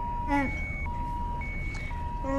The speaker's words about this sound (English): Don't worry. We're not going to turn it off. The one of many alarm sounds.